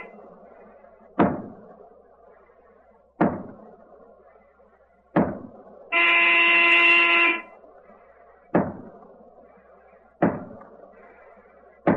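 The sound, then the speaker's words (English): A submarine diving alarm sounds one loud, buzzing blast of about a second and a half as the submarine dives immediately in fog with all hands going down the hatch, set among a steady series of heavy metallic slams and thuds over a low background rumble. “Down the diving alarm.”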